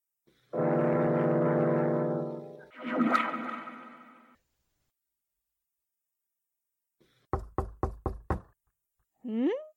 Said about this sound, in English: I wonder who's knocking at this time of night. Hold on. I'm coming.